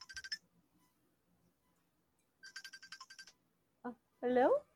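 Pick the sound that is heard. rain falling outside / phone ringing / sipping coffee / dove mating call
phone ringing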